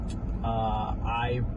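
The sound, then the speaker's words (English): Steady low rumble of a car driving through city traffic, heard from inside the vehicle, with a brief voiced sound rising over the engine drone partway through. “I am currently driving through a city, and I just want to put this video together. So I'm in traffic right now.”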